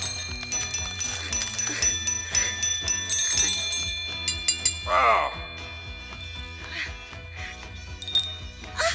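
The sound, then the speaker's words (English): A great bell at the heart of a rock rings out with rich, sustained metallic tones that overlap and shimmer, struck repeatedly in a steady rhythm, with a brief vocal sound midway. “ring your bell.”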